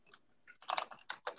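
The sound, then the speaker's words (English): Keyboard keys clatter in a short, irregular burst of taps, quiet, with a few louder clicks toward the end and no one speaking. “You can hear the keys.”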